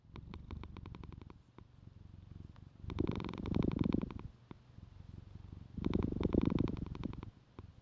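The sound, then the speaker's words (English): A young cat purring, a steady low rumble that swells louder in two bursts with rhythmic breathy pulses, no voices present. “Our newest cat, she's pretty young.”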